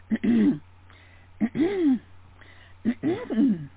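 A nervous young woman employee at an airport ticket counter at Washington National clears her throat three times before making a flight departure announcement, evenly spaced, each a short voiced rasp that rises and falls, with a faint steady hum underneath and no talking.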